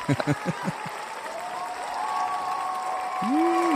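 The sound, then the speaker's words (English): Sustained audience applause, a steady wash of clapping that builds in loudness over a few seconds, with brief voices at the start and a sustained tone running underneath. “The crowd's going crazy, bro. We have a live audience.”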